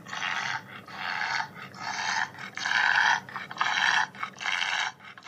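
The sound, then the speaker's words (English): A bulldog with breathing problems wheezes and snorts through labored breaths, about six harsh, raspy inhalations and exhalations in a steady rhythm, fairly loud, with no one talking. “For example, here is a clip of a bulldog trying to breathe.”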